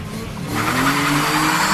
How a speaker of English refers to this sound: You slide through the gears until you are running into fourth along a fairly flat stretch at high speed, the very fastest you can go.